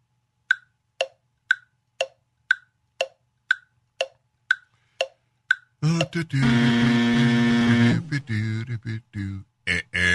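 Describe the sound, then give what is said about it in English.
A quiz countdown ticks steadily, about eleven sharp clicks at half-second intervals, then a loud, harsh, sustained buzzer blares for a couple of seconds before a voice starts talking. “Thank you for the buzzer.”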